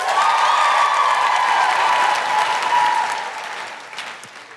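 A burst of audience applause, dense and steady clapping with a faint tone of cheering, holding loud for about three seconds before tapering off.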